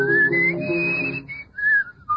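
A person whistles Beethoven's Leonore Overture No. 3, holding long clear notes that slide between pitches, with a low accompanying tone early on and short breaks before the last phrases.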